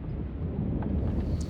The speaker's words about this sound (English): Okay, status update. It's 5:59 a.m. It's thundering quite a bit. Seeing some lightning off to the north.